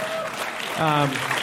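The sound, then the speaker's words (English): An audience applauds in a steady, dense patter of clapping, with a voice rising briefly over the applause partway through. “I get an applause for that.”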